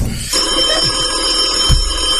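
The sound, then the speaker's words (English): A telephone rings with a steady, high, bright trill that starts a moment in and continues unbroken to the end, with a dull low thump partway through. “George, there's a call for you.”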